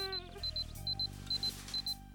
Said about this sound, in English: Oh, morning already. It's 7:04. What a weird time to set your alarm for.